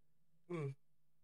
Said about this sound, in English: Sorry, I'm yawning.